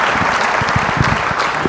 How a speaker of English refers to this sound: Round of applause.